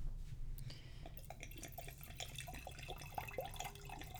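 Wine pours into a glass in a steady, quiet trickle with small gurgles and clinks, the pitch rising slightly as the glass fills. No one speaks.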